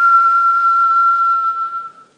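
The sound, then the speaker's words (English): A single breathy whistle through pursed lips, a breath whistled in or out during a guided breathing exercise, holds one steady, airy pitch for about two seconds, fairly loud, then trails off as the breath runs out. “Gently lowering your hand into your lap and parting your lips as if you're sucking through a straw. We're going to whistle that breath in. Whistle the breath out.”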